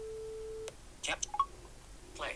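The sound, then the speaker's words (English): Irregular electronic beeping from a phone app guiding where to aim the camera before capturing an image: a sustained low tone cuts off abruptly, then a few short, uneven bleeps and chirps follow, with a brief voice-like sound at the end. “So we're getting a lot of beeping now, but it's not really steady beeping.”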